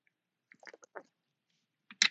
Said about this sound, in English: Listen, let me get a sip of water.